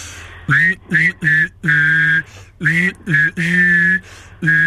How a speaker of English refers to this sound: I can whistle and hum at the same time. How? Like this. Give me a song to whistle and hum at the same time, I'll do it.